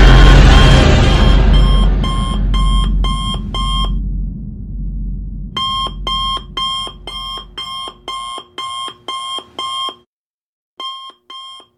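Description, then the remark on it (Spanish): An alarm clock that routinely wakes someone in a bedroom at 6:30 in the morning rings in rapid, evenly spaced electronic beeps, loud, starting over a heavy rumbling crash that fades, then pausing briefly before beeping again. “Y justo cuando este reclamo autoritario se dio lugar, la alarma que rutinariamente despierta Sandu a las 6:30 de la mañana suena con similar autoridad.”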